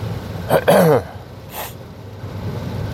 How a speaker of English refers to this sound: With hopefully at least 50% less clearing of my throat and coughing.